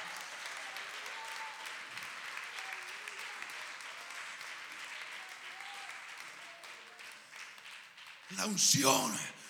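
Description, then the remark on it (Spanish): A church audience claps hands for the Lord steadily in a dense, continuous patter, with faint voices mixed in beneath. Near the end a loud voice rises above the clapping. “Dale palmas al Señor con el corazón.”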